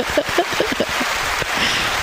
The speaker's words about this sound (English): It's a round of applause for them. Let's hit it.